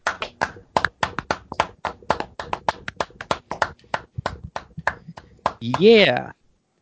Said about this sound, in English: Yeah, let's get a round of applause.